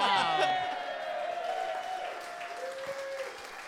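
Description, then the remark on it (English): A crowd claps and cheers steadily, with whoops and excited voices rising over dense, continuous applause for a few seconds. “The passengers applauded, much like that, but also the coach heard the announcement.”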